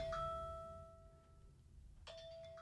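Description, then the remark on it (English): An oven timer chimes with steady tonal notes, one tone sounding near the start and another striking again about two seconds later, over a low rumbling background with no talking, while a Trader Joe's vegetarian meatless cheeseburger pizza bakes. “Now, that timer, folks, I don't know how much was recorded doorbell? Before. It's not the doorbell.”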